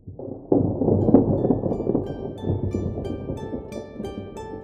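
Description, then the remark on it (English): Thunder rumbles in suddenly after a brief quiet moment as rain threatens, a deep rolling roar that stays steady, with faint, thin ringing tones rising above it toward the end. “It looks like there might be threat of rain in the air.”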